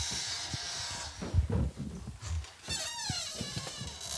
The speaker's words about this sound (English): These are all the noisiest possible chairs we could be in. Should we all make chair noises for a sec?